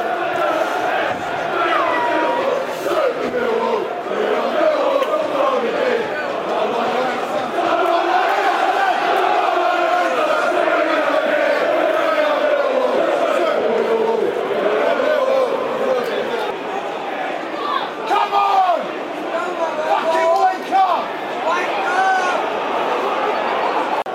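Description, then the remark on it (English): A large football crowd chants together in support of the Lions in the 54th minute of a match against Bristol, a loud, sustained wall of massed voices rising and swelling steadily for the whole stretch without a break. “Crowd getting behind the Lions.”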